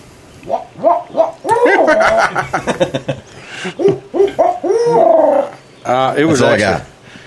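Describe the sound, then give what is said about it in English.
A person imitates an owl's hoot with a string of loud, wavering vocal calls that rise and fall in pitch, repeated in quick bursts with brief pauses between them. “Let's hear this owl hoot.”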